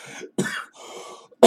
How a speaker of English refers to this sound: I'm coughing. That's a bad sign.